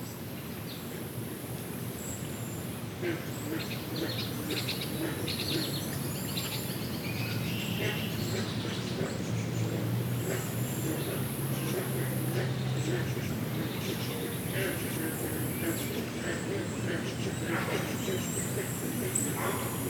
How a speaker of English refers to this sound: And then there's a third one that was just as I was leaving, I thought, there's a pond just off the side of the river, and had some lovely green frogs doing a lovely chorus and things like that.